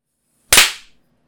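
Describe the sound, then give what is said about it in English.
A single sharp hand clap, made as a sync clap, rings out from silence, a bright, loud snap that decays quickly over a fraction of a second, with no voices around it. “We haven't clapped. We should clap.”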